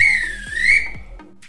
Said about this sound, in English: If this were a real bit of extra time, this is when the ref would blow the whistle because it's finished.